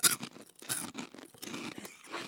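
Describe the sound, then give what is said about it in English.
Crisp crunching of Poppables snacks being chewed, a quick irregular series of brittle crackles and snaps lasting a couple of seconds, with no voices. “See if you can crunch that.”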